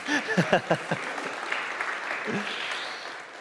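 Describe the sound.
An audience applauds in a steady, dense wash of clapping that tapers off toward the end, with voices speaking over the first second and briefly again midway.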